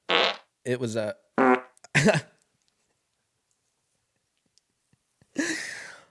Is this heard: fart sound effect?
yes